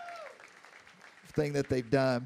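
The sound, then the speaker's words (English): At a camp, a crowd breaks into loud shouting and cheering for the people who made the camp happen, after a quiet moment, voices whooping in bursts over a soft wash of clapping. “I wonder if we can shout real loud and give them a hand clap for everything that they've done.”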